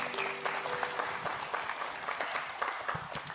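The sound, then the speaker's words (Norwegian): A church audience applauds the worship leader, dense overlapping claps forming a continuous wash of sound at fairly even loudness, with a faint tonal hum lingering underneath at the start. “Skal vi gi lovsangeren en applaus?”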